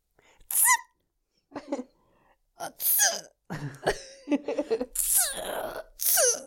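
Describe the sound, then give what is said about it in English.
A loud sneeze with sharp gasping inhales and strained vocal sounds building around it, arriving in several short bursts. “Oh my God, I feel like I need to sneeze.”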